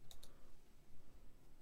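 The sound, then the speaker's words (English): Two quick, light clicks on a computer keyboard at the start as someone types with one hand, then only a faint low background hum. There is no talking. “I'm typing one hand right now.”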